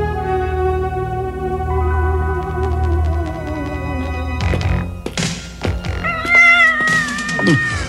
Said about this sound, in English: In a nearby cavern, we see Dagger get spooked by a howling cat